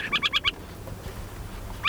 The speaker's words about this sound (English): An adult owl has been watching us from a fence post, probably the whole time. It's a call a bit less fearsome above ground.